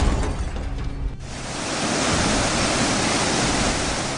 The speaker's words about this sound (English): And this big wave of water rushing forward into town square, surprising. It does knock a couple of the cultists over as they're just not expecting a shit ton of water to come pouring on them from behind. It throws the rest of them into disarray.